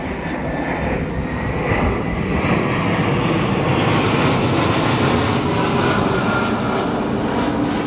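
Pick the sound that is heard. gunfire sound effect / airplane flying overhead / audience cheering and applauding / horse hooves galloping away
airplane flying overhead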